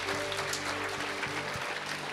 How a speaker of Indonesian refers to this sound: Haleluya, berikan tepuk tangan.